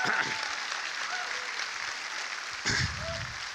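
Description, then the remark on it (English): A church audience claps hands steadily to praise the Lord in a dense, continuous patter that swells louder near the end, with some voices calling out underneath. “How would somebody clap your hands and praise the Lord?”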